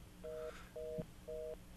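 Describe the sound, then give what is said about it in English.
A phone line beeping after the caller hangs up: three steady, evenly spaced mid-pitched tones, each about a quarter second long, with a fourth starting as it ends. There is no talking. “All right, John's off, but we still have the beep.”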